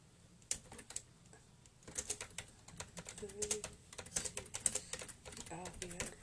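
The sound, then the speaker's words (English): Crisp keystrokes on a computer keyboard as someone types a couple of lines of notes, a few scattered taps at first, then a steady, fast, irregular stream of clicks, with faint murmuring voices in the background. “It is like I've written like two lines. When if I was writing that on paper, it would be like half a paragraph, mate.”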